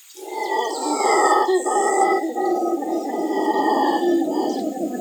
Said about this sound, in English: Which means that I get to use my howler monkey sound effect again.